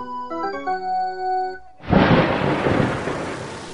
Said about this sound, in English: Geez, it's really raining cats and dogs out there.